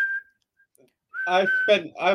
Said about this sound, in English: I went a whole month whistling that to the point my wife got fucking pissed off with me.